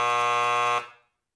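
A loud, harsh overtime buzzer blares in one steady burst for just under a second, then cuts off and fades quickly into silence. No one speaks.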